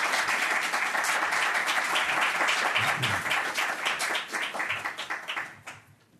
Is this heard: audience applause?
yes